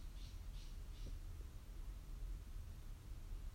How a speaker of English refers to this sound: You will hear the sound of the birds around me. Just accept that they are there and go back to your breath.